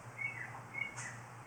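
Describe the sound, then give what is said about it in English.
A bird chirps in a few short, thin, high-pitched bursts spaced through a quiet moment, with a faint low hum underneath and no talking. “What am I hearing right now?”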